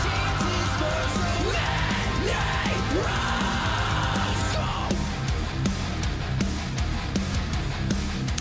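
Loud, dense rock music with an electric guitar playing quick, fluid legato runs of hammer-ons and pull-offs over driving drums and bass, continuing steadily throughout.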